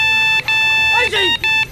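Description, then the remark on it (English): A telephone rings with a steady, high electronic tone broken by short gaps into a quick repeating pattern, loud throughout, with a brief gliding voice-like sound rising over it midway. “A phone again.”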